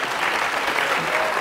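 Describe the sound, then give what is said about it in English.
An audience applauds steadily for Wyomia Tyus and Dr. John Carlos, on stage together for the first time, a dense, even wash of clapping hands that stays loud and unbroken for the whole moment, with no pauses or single claps standing out. “Round of applause, please, for Wyomia Tyus and Dr. John Carlos.”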